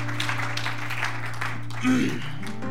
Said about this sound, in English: Will you give God a hand clap of praise? Amen this morning. Hallelujah.